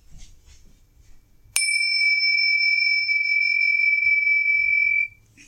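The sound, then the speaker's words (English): A single bright bell is struck once and rings out with a clear, sustained tone for about three seconds before abruptly stopping, preceded by faint low background noise and no talking. “Shit, I forgot the bells again.”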